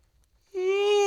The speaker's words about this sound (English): Can you yawn any louder?